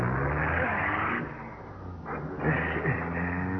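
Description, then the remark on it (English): A car engine roars steadily, dips briefly, then surges again as robbers speed off in a car taken from the man they robbed, a continuous rumbling drone with harmonic engine tones and no voices. “We got the guy's clothes, a little dough, and a car. Let's go. Come on. Step on it.”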